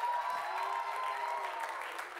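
An audience claps steadily for a couple of seconds, a dense, even patter of many hands, with a faint murmur of voices beneath it.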